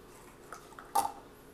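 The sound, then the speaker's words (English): A faucet drips into a sink: one clear watery plink stands out after a couple of fainter taps, all fairly quiet against a soft background hiss, with no talking. “My little sink is drip, drip, dripping and getting on my nerves.”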